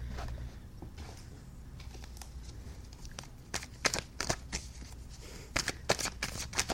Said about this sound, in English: It kind of sounds like fapping on the microphone a little bit, but it's me shuffling cards, guys.